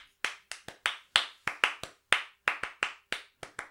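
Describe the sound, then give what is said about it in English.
Sharp hand claps, around fifteen in under four seconds, beat out in an uneven, syncopated pattern with bunched doubles and gaps, like interlocking rhythms. No one speaks. “Like clapping in polyrhythms to an instrumental band en masse as a crowd at a festival.”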